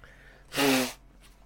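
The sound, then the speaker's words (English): A single sharp sneeze bursts out, a loud, breathy explosion lasting about half a second, with near silence before and after. “Oh, I'm sneezing.”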